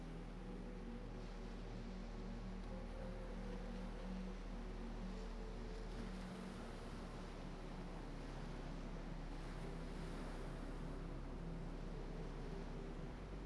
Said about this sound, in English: The sound here was of distant waves. A gentle, repetitive sound that was both calming and powerful.